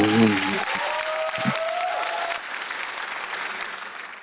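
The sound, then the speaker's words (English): An audience bursts into sustained applause, dense clapping, with a voice briefly speaking over the start before the clapping carries on steadily to the end. “So, audience, big round of applause for a great faith and country-loving freedom fighter.”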